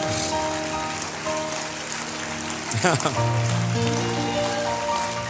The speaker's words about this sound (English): Come on, clap your hands and thank the Lord for it right now.